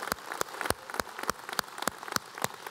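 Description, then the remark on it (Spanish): A crowd claps steadily for about 60 men, standing, who went to Puebla, with sharp, evenly spaced claps standing out above a dense wash of scattered applause. The clapping is fairly soft, and no one speaks. “Vamos dándoles un fuerte aplauso a estos hombres.”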